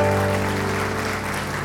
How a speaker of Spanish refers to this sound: Él es digno, Él es digno. Dale un aplauso al Señor, que Él se lo merece.